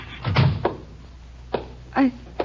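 A door bumps and thuds as it swings, followed by a few scattered knocks and a brief muffled tone, all at moderate volume.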